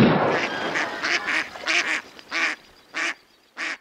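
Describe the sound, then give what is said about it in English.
A duck quacks loudly, a quick run of raspy, nasal quacks that slows into three spaced-out calls, with no talking, used as an intro for a duck report segment. “did you ever make like an intro for Sean's Duck Report?”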